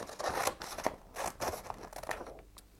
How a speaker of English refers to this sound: So I'm going to cut a piece of the paper.